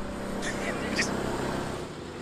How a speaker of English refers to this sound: Because that definitely sounds like an ICE motor going on these. And these guys just driving down the street. He's got a little joystick in the middle, if you see it there. It's a little toggle.